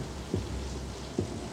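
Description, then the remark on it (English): Steady rain hisses throughout, broken by two dull, low thumps of thunder spaced about a second apart. No voices. “A flash of lightning briefly illuminates the room.”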